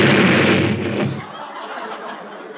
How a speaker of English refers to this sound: Well, now I'm going to light this one. Hey, now, look at this one. Hey, what's the matter? Why are you all running away? Hey, who's lighting all these firecrackers?